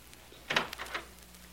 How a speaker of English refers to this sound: Oh, listen, that's the door.